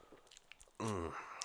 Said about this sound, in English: Since I'm good, I'm going to get a sip-a-roo real quick. Okay.